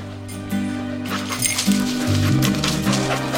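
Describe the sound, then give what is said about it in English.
A search dog whimpers and gives short yips, with jingling clinks, as it is run to search for human remains, over a steady low droning background that carries through the whole moment. “Just going to run this dog to see if we can find any type of human remains that are left.”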